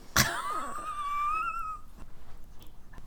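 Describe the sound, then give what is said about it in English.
A dog lets out a single drawn-out, high-pitched whine lasting over a second, rising and wavering before trailing off, preceded by a sharp click, with quiet background after. “Her dog does not care.”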